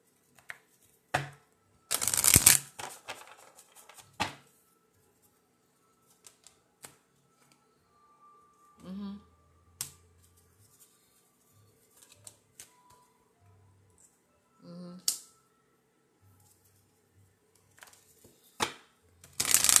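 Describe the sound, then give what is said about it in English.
Tarot cards being shuffled in irregular bursts of papery riffling and flicking, loudest early on, then scattered softer shuffles and taps with quiet gaps between. No one speaks. “Okay, so the cards that flew out were thoughts create your reality.”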